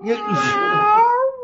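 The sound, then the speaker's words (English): A cat lets out one long, drawn-out meow, loud, its pitch wavering and rising slightly before it cuts off. No talking over it. “Well, I found the cat.”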